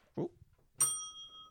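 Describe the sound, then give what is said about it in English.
A single bell is struck once, its bright ringing tone sustaining and slowly fading for over half a second, preceded by a brief low muffled sound. “I hadn't rang the bell in a while.”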